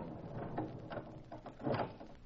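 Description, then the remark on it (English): A door at the back of a huge abandoned warehouse is slowly pulled open with a few scraping, creaking bursts that swell toward the end. It is fairly quiet, with no voices. “I pulled open the door. Slowly.”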